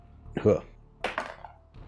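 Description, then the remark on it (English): A twenty-sided die (D20) clatters across a tabletop in a quick series of hard clacks and taps for a luck roll, settling after about half a second on 17, with a brief murmur of voice just before. “Make a luck roll. Bust out that D20.”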